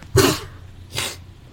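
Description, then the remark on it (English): A dog sneezes twice in quick succession, two short breathy bursts, the first slightly stronger, with a low steady hum in the background. “Wait. Whoa. Bless you”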